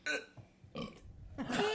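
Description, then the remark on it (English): A few short, throaty burps in quick succession, fairly loud, with rough voiced bursts separated by brief pauses and no clear speech. “The fuck you said a word, then burped, and made a noise.”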